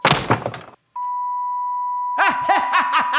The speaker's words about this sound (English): And then the sound of beeping.